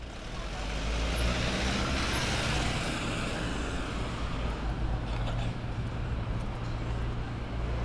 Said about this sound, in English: I like the buildings, but it's too much traffic.